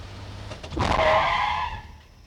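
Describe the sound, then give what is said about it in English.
A truck speeding down a street skids to a stop right in front of a man, with a loud, sustained tire screech over rumbling engine noise, peaking near the start then fading as the vehicle halts. “quickly scoops up his tackle box and steps back, the truck stopping right in front of him.”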